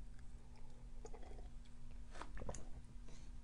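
Someone takes a sip of tea, with a few soft wet mouth clicks and a gulp over a faint steady hum. No one speaks.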